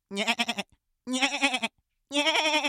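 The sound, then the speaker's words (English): A goat bleats three times in a row, each cry loud and wavering, with short silent gaps between them and no talking. “You've manifested your soul into a goat!”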